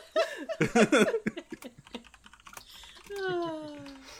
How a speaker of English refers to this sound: Sorry, I am typing up the treasure list real quick so we don't have to review it on dialogue.